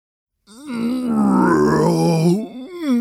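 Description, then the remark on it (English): In a told story, a voice imitates a character waking in the evening after napping all day: a drawn-out waking growl, a low, rumbling groan that swells and holds for about two seconds, then trails into a shorter rising grunt at the end. “On this particular day, he awoke in the evening with a growl.”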